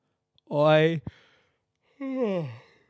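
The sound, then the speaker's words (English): A voiced yawn: a long drawn-out groan that slides downward in pitch, a brief click, then a second, shorter falling exhale after a pause. No one speaks. “Hey, maybe this yawn is because I'm about to say something that's quite emotional.”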